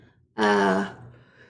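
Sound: yawn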